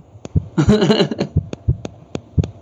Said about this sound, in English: Oh, that static just came in hot, bro.